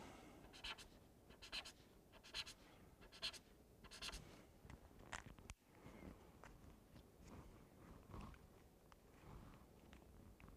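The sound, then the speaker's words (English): Quiet, scratchy squeaks of a marker pen moving across paper while reworking tones on a drawing, starting as a quick regular run of back-and-forth strokes, then looser, scattered strokes, with no one talking. “And you find once you get into this stage in doing a visual that you're kind of using the pens, the tones that you were using earlier, and reworking things and reevaluating them as you're going through it.”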